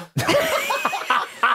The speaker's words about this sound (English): Wonderful nose blowing there. I put my cough button on. Did you? And I didn't hear it at all. I had to hear it off. Did it work? That's you blowing out a snot bomb.